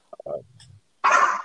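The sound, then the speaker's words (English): A dog lets out a few short yips and a low, falling whine, then one loud, harsh bark after a brief pause. “I gotta let my dog out.”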